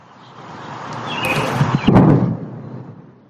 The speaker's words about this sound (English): we have new insight into the sonic boom that is making headlines across the nation